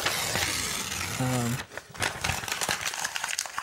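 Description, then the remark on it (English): Paper being ripped and crinkled: a steady, rough tearing rasp for over a second, a brief voice-like tone, then a run of sharp, crackly rips and rustles. “We're like ripping papers. That's a new thing he does now. I start ripping the paper.”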